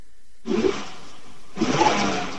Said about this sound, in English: I'm just going to get you to rev your car